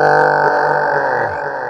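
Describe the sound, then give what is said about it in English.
A man voices the roar of a frost giant, also called an ice giant, a sustained, loud, gravelly growl with a dense harmonic buzz that holds steady, then drops slightly in pitch and fades near the end. “The ice giant, or the frost giant, turns to you and roars.”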